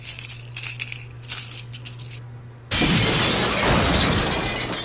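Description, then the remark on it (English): Light tinkling and a steady low hum, then something suddenly smacks hard into a glass front window, setting off a loud, sustained burst of shattering, crunching noise that runs to the end. “Something just smacked into the front window.”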